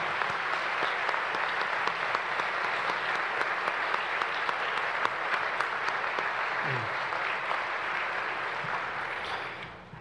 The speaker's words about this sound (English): Let's give all these amazing graduates a round of applause.